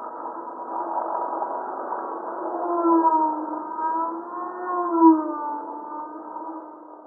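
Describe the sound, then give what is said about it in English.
An eerie, droning hum with several stacked tones that slowly waver and bend in pitch, swelling and fading in loudness like a low wail, continuing steadily without any voices. It is a sped-up seismometer recording of rock arch vibrations induced by passing or hovering helicopters, normally outside human hearing. “this is outside of human hearing, as you mentioned, but if you were to speed it up to where we can hear it, what does it sound like? I think it sounds kind of spooky.”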